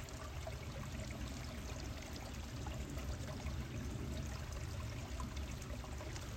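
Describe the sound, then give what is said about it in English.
A steady trickle of creek water runs throughout, a continuous babbling wash with small splashes and gurgles, even in level, with no voices. “Let's get a little bit more of the trickling creek.”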